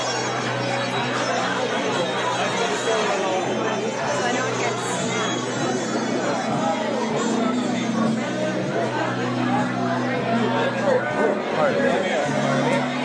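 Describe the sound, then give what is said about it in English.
Dense crowd chatter from a packed gathering, many overlapping voices merging into a steady, loud babble with no single speaker standing out, holding an even level throughout. “Oh, it's getting packed.”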